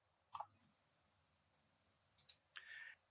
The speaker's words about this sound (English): And as that die rolls, he is going to miss. And I don't know why I use the automatic dice when I have my Norse Foundry dice, but I'm just feeling kind of lazy right now.